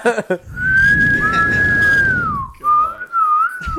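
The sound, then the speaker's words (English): A person whistles two notes at once in a loud double whistle: a long held tone that slides downward, then a shorter wavering phrase, over a low rumbling background. “The double whistle.”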